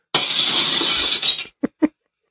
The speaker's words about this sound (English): That's her crashing through the window.